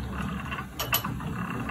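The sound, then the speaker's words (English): A self-feeding engine mechanism runs, its flywheel above storing kinetic energy as it feeds itself, with a steady low mechanical rumble and faint rhythmic ticking, broken by two quick, sharp metallic clicks near the middle. “It stores the energy up above in that wheel. Makes kinetic. And see, it's feeding right there. Self-feeding, no kidding.”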